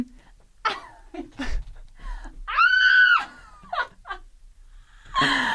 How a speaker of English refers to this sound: I didn't know I could go that high. Wait, let's try that again. Wow, I sound very straight when I scream.